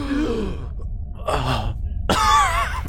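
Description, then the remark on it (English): A person acts out reviving: a strained, voiced gasp followed by two harsh, rasping coughs, fairly loud, the last one longest and breathiest. “you gasp alive with a 1 HP.”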